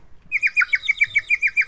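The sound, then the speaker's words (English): A water-filled whistle from Hungary warbles in a quick, steady trill of about ten bubbly, birdlike chirps, bright, playing alone without any talking. “You put water in them and they sound like a bird.”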